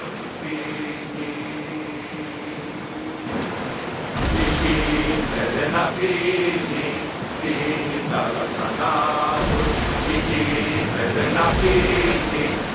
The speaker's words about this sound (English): Yes, also for the travel camera, we picked some elements of the boat that we still wanted to hear from that perspective. So we're still hearing the resistance of the water. We hear the bow splashes, we hear the sails, and the chanties.